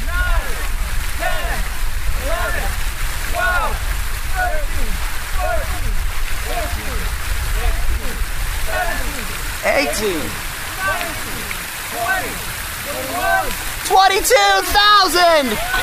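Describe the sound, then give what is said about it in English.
Steady splashing of the water feature at the North Point Tower in Milwaukee, Wisconsin, a continuous wash of falling water, with a group of friends gathered around it doing a push-up challenge, chattering and calling out, growing livelier toward the end. “a bunch of his friends gathered around the water feature at the North Point Tower in Milwaukee, Wisconsin to do day 1,000 of his 22 push-up challenge.”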